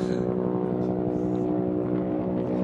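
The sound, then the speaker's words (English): A helicopter flying overhead drones steadily, a loud, continuous engine and rotor hum holding at even volume without fading. “Get to the chopper!”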